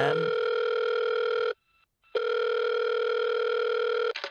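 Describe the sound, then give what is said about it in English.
A telephone ringback tone heard from the caller's end after dialing a number to reach someone: a steady buzzing ring lasting about a second and a half, a short silent gap, then a second long ring, clear and fairly loud. “let's dial the number, Sean, and let's see if we can get her on the line. Is it ringing? Yes, good.”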